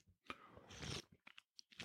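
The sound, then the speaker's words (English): A sip of hot coffee, a two-day-old Starbucks Americano at 140 degrees, from an Ion mug: a brief airy slurp, followed by a few small wet mouth clicks and a swallow. It's quiet, with no one talking. “I'm going to pause right here for a sip.”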